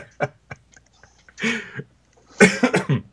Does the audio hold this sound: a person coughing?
yes